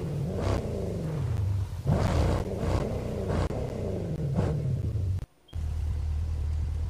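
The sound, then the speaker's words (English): A heavy truck engine rumbles loudly, revving up and down in repeated surges with a brief cut-out near the end before the low drone resumes. “I got a more durable truck. It's more stable.”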